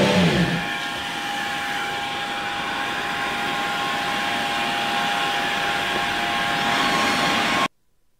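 A Formula 1 car's engine screams at a steady high pitch for about seven seconds, loud and constant with a whining tone, then cuts off abruptly. No one speaks.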